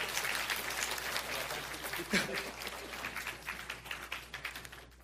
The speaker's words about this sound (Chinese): 诶，俾啲掌声佢哋。